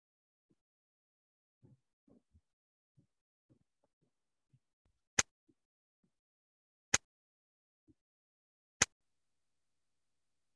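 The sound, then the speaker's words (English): Three sharp, loud hand claps spaced slowly and evenly about two seconds apart, preceded by faint, low murmuring sounds in an otherwise quiet space. “Tariel, you giving a slow clap right now?”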